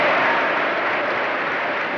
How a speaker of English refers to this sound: Please don't count the applause against the time that I have been allotted for speaking.